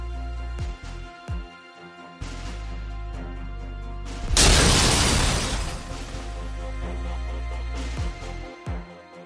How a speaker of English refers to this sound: The hydroplane takes a ramp leading to what appears to be a metal grating, shattering the ceiling and emerging at the main hall of the Senate,